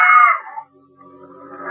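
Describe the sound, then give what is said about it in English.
A sudden, loud, high-pitched scream from an old cleaning lady at the top of a staircase in a Midtown building, on finding a corpse, bursts out for about half a second, then quickly fades, leaving only faint, low tonal sounds trailing behind. “I'd about negotiated the walk-up when a scream stopped me dead in my tracks.”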